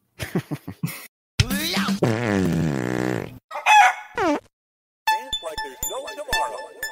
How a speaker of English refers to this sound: Cock-a-doodle-doo.